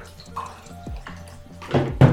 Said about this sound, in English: Okay, so he's pouring it over the ice.